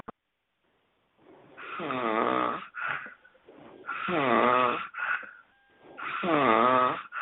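loud snoring

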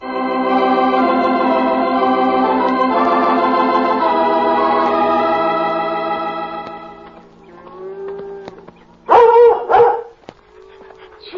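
german shepherd dog barking

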